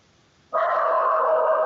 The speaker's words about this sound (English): I hear your dog already.